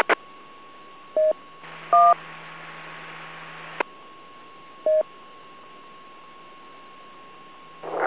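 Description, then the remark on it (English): Short bursts of DTMF tones from a Yaesu radio with WIRES turned on come in over a radio channel, a few quick two-tone beeps spaced apart, with a steady hum and a background of static and noise between them. “I've got somebody who has wires turned on. If you're running a Yaesu radio, Please turn it off and try it again.”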